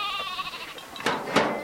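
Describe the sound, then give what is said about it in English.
Sheep bleat in a group in a corral as a shepherd wades among them and snags one with his shepherd's cane, a wavering cry followed by a couple of shorter, harsher bleats, with brief scuffling noises in between and no talking. “Begay opens the gate and wades into the mass of hooves and horns”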